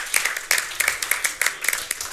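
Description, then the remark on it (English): A crowd at the Manufacturing Nebraska's Future event applauds everyone involved, with dense, overlapping handclaps, bright and crackly, keeping a steady, moderately loud patter throughout the short stretch with no one speaking over it. “Thank you for, you know, hey, let's give a round of applause for everyone involved in today's Manufacturing Nebraska's Future event before we get rolling.”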